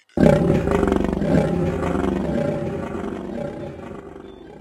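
A lion's deep, rumbling roar erupts suddenly and loud, holding strong before slowly trailing off in a long, resonant growl. No voices are heard.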